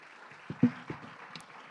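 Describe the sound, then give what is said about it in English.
Standing audience clapping in praise to the Lord, heard as a soft, steady wash of applause with a few sharper individual claps standing out at irregular moments, with no voices. “Well, let's stand and give the Lord a hand clap of praise.”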